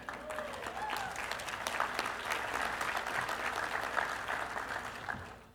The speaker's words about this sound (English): You can cheer.